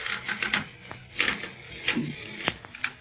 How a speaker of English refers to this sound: Golly, this bed's creaking's almost as loud as Barney's snoring.